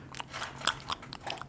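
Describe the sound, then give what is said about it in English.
A pet dog named Joe crunches and chews food in a quick, irregular run of crisp bites and wet mouth clicks, fairly quiet, with no talking over it. “It's my dog is eating again, by the way, in case you can't hear that.”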